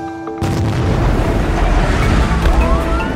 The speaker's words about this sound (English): On August 4th, 2020, a massive explosion went off in the port of Beirut, caused by poorly stored ammonium nitrate. It killed over 200 people and injured 7,000 more. Parts of the city were leveled.